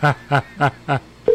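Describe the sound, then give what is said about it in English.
A telephone rings on an outgoing call: four short, evenly spaced electronic pulses in quick succession, then a steady tone starts. Clear, with no one talking. “So you know, you hear the phone ringing.”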